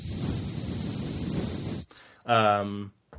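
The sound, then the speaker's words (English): A heavy-duty aerosol duster can sprays in one steady, loud hiss of mist lasting nearly two seconds, then cuts off abruptly. A short voiced exclamation follows. “And you spray it, and it just makes like mist.”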